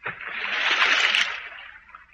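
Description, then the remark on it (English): A person splashes into river water inside a culvert, a broad rushing splash that swells over about a second and then fades, fairly loud, with no voices. “I'm going through that culvert.”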